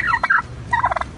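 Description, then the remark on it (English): A turkey gobbles in two rapid, warbling bursts, its quavering mid-pitched notes rattling out quickly with a short pause between them, loud and clear with no talking. “You can't do the turkey won't let you do anything.”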